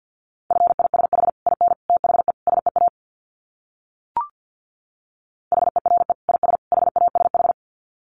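Fast Morse code at 50 words per minute: a steady mid-pitched tone keyed in rapid dits and dahs, two runs of about two seconds split by silence and a single short click.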